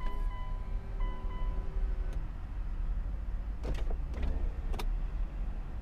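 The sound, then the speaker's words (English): Electric car windows whir down over a steady low engine rumble, a motor hum with harmonic tones in the first two seconds, followed by a few sharp clicks and clunks near the end. “I need to roll down the windows.”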